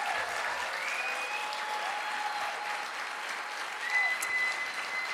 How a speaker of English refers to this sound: Well, can we please have a round of applause for my amazing guest, Karen Dunbar?